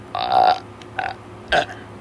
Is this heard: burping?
yes